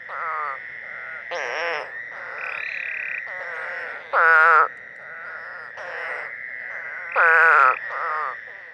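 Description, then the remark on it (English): A chorus of unusual North American toads with cat-like vertical pupils calls steadily: a continuous buzzing drone overlaid with loud, wavering, bleat-like cries that burst out every second or two, clear with no talking. “That makes them stand apart from all other frogs and toads in North America.”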